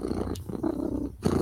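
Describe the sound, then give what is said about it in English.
A deep, rumbling purr from a big cat, steady, pulsing in low waves with brief pauses for breath between the rolling stretches. “Because, baby, when I'm purring, I'm happy.”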